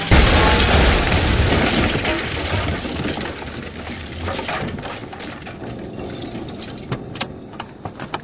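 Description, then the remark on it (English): A Winnebago motorhome smashes through a door, a panel with a doodle on it, with a loud, rumbling crash, followed by a fading clatter of debris and scattered metallic clinks and rattles. “That panel with a weird doodle on it was a door, not a drive-through. Well, it's a driven-through now.”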